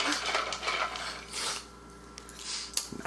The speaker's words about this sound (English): Is the rumbling of the cup.